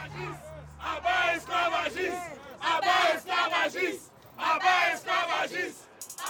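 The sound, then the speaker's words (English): A rally crowd shouts in rhythmic bursts, an activist's loud voice through a bullhorn leading and many voices answering in call-and-response chants, energetic with brief pauses between phrases. “holds up a bullhorn and revs up the crowd.”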